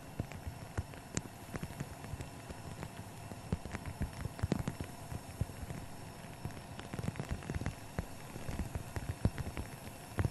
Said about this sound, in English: He's all alone, walking all alone outside in windy, rainy weather.